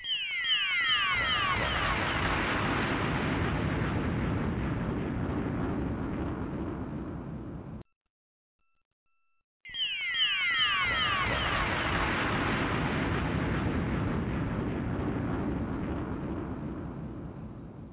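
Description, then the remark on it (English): Two bomb explosions, each opening with a quick falling whistle before a loud, sustained roaring rumble that slowly fades, separated by a short silent gap. No voices are heard. “We're finna drop these bombs.”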